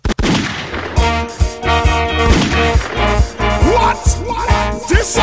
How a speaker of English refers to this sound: It's fireworks night this weekend, and we are letting off some fireworks tonight.